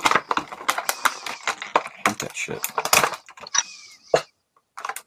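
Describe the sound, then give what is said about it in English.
Plastic crinkling and a quick run of sharp snaps and clicks as zip ties are removed from toy packaging, with a voice briefly muttering over the handling. “Oh, they got like the freaking little zip tie things on here.”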